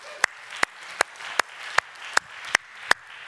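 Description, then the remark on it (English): An audience claps for God in church, together in a steady, even beat, about nine sharp claps in a row over a continuous wash of crowd noise, with no one speaking. “And I want to applaud him for that.”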